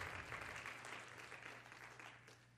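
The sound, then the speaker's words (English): A church audience claps hands to the Lord in thanks for his word, in sustained, dense applause, steady and fairly loud, with a low hum underneath and no voices rising above the clapping. “If you believe that, would you just clap your hands to the Lord and let's thank him for his word.”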